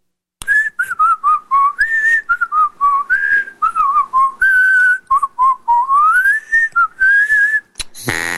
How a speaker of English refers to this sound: Whistle.